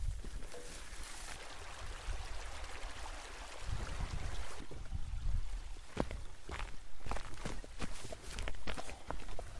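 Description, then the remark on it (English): Wet, squelching footsteps slosh across a bog, with dogs leading the way straight through, starting with a low, murky churn of water and then breaking into irregular splashy steps. No one speaks. “And I'm going to concentrate on crossing this. Crossing this bog before a little bit of a plodge.”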